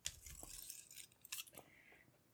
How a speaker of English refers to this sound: So, this is the one I usually open packages with. It's also got a rape whistle on it. Wait a minute. Open that knife, will you?